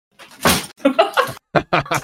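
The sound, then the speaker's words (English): A bedroom door is pushed shut, giving a series of loud bumps and thuds in quick succession, with brief bits of voice or laughter mixed in. “can you shut my door, please?”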